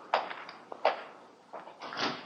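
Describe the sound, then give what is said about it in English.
A door is pushed shut: two sharp clunks close together, then a softer rattling scrape as it settles, with no voices. “Close the door.”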